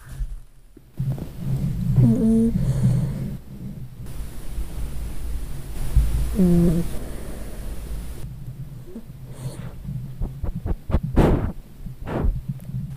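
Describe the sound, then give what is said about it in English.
A dog asleep on its owner's lap during a recording session snores over a steady low rumble, amplified, with two drawn-out, slightly whiny snorts a few seconds apart, followed by a run of soft snuffling clicks and breaths. “Now, I have a clingy dog who always wants to sit on my lap during recordings, but he also falls asleep and he snores. And this is the ambient sound on my audio track, amplified for emphasis.”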